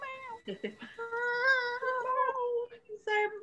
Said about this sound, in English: I feel like I hear a cat crying. Really? Behind me. It's Emil doing a sad noise because he wants in. It's this really high-pitched, sad squeak, and it's like, I know you're not really sad.